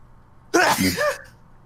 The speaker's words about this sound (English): That was the Rona. You could tell from the propulsion from his nose. Looked like you were going to go flying with that sneeze. I felt like it. He got a couple feet in the air.